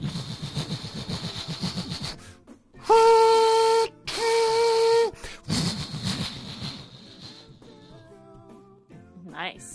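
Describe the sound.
A voice imitates a train whistle with two loud, sustained, steady-pitched blasts separated by a short pause, with people talking before and after.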